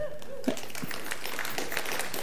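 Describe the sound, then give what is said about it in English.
An audience breaks into applause after a brief tonal lead-in, cheering news that nearly all of the debt on their facility has been paid off, with many overlapping hand claps forming a steady, crackling wash that continues at moderate volume to the end. “Don't clap for me.”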